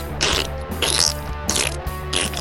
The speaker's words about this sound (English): Now I am recording. You may commence with the farts. Farts.